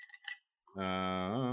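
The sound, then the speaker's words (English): A couple of ice cubes clink into a small glass in quick, bright taps, followed by a brief pause and then a steady, buzzing tonal hum that holds to the end. “Anyways, what I'm going to do, a little glass, nothing fancy, a couple ice cubes.”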